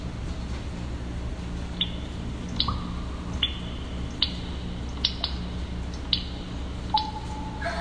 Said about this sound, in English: Roots enter through a gap in the ceiling. There is a constant drip of water that falls from a large root at the heart of the tree. You see fresh water dripping from a root